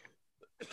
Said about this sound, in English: Whoa, hot start. He's got that Major League Baseball opening day cough. Got that opening day fever.